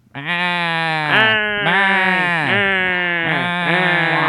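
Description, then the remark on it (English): A man imitates a sheep mixed with an impression of Gilbert Gottfried, in a nasal, comic voice, letting out a loud, quavering bleat that wavers in several pulses over about four seconds. “It's Gilbert Gottfried and a sheep mixed together.”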